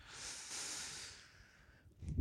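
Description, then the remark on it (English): A voice imitates heavy breathing, a long airy hiss of breath lasting over a second, then trails off before a short low rumble at the end; no words are spoken. “Yeah, yeah, sitting there just breathing really heavy.”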